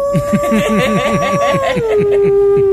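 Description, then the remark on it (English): A person imitates a wolf howl: one long, steady wavering note that slides lower near the end, with rhythmic breathy chuckling pulsing underneath. Fairly loud. “That wasn't a bad wolf sound.”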